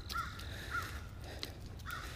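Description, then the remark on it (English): A crow caws three times in harsh, evenly spaced calls over a steady low outdoor rumble, moderately loud, with no one speaking. “Crow.”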